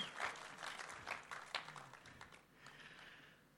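An audience applauds and cheers for a woman: dense, crackling clapping with sharper peaks early on, easing slightly toward the end of the few seconds, with no speech over it.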